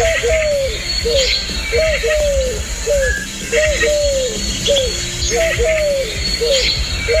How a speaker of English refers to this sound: you may want to be careful what you wish for, unless you'd enjoy hearing the rather repetitive call of the Eurasian collared dove outside your bedroom window when you're trying to catch a little shut-eye.